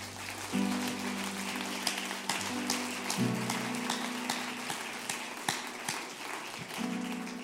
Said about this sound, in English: I do want to give honor to the pastor tonight and his wife. Could you give them a hand clap?